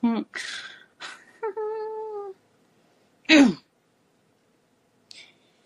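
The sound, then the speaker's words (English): Several voices take turns making meow-like sounds, some drawn out with a wavering, sing-song pitch, others short and breathy, with brief pauses between them and a final faint squeak. “They like to do cat sounds. That's how they talk. But yeah, it's fun. Yeah. So we all go, meow.”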